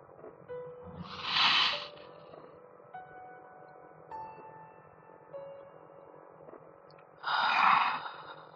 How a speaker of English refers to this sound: Take a deep breath in. And hold it. And let it out. Slowly. Here, I'll do it with you this time.